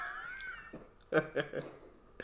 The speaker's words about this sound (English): Okay. Stand by while our cat coughs up a hairball.